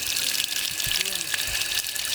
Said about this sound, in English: I've actually never seen anything like this in any other national park, but maybe there are somewhere out east, but when it's open, boy, it's a really unique experience. This is an original water fountain, that's for sure.